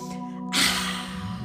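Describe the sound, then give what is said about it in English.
A deep breath drawn in through the nose during a guided breathing meditation, a sustained airy hiss lasting about a second over a soft, steady musical drone. “Now as you breathe in through the nose, return the breath with and breathe out those flames of the Agni fire, creating a circle around you, a circle of protection in through the nose.”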